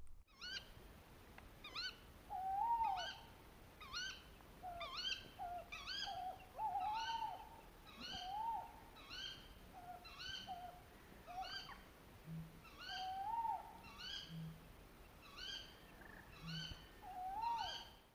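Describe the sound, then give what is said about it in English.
A male tawny owl's hooting repeats in steady bouts, with a female's sharp contact calls slipping into the pauses between them, clear against a quiet night background. “the male hooting and the female dropping a contact call into the pauses between the bouts of hooting”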